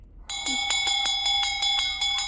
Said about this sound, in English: Indeed, yeah, so they use the bell to wake her up, which is very, very good thinking, because that is a nice, gentle way to wake someone up